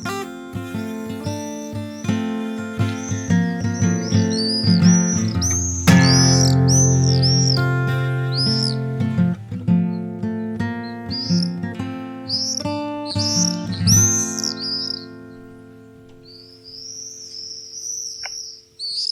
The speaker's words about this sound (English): our bird this week is the swift. I know it's one of your favourites. I know you've done a lot of work on conserving swifts and monitoring them.